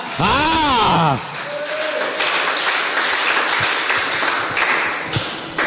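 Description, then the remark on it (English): An audience breaks into loud, dense clapping in thanks for what God has done, carrying on steadily for several seconds, opened by a brief swooping vocal cry before the applause takes over. “If you know what God had done for you just now, you'll be clapping.”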